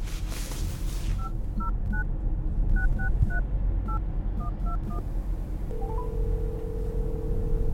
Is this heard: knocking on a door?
no